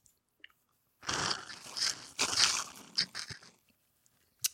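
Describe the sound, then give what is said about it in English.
Wet slurping of a thick, pulpy peach margarita: a long noisy draw for a couple of seconds, then a few shorter sucking pulls, with a quiet click at the end. “we are drinking Dama Fruit Margaritas, the meaning of which will reveal itself”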